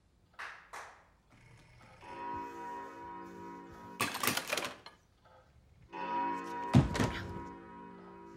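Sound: hand clap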